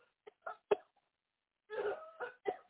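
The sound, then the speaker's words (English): A person coughs in a series of short, harsh bursts, a few quick ones, then a longer rough hacking fit followed by two more coughs, fairly quiet and with no talking. “Cough that mess in.”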